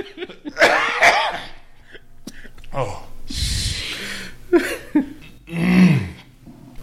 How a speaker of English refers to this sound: Oh, you cannot make me laugh because the COVID shit sends me in a coughing fit.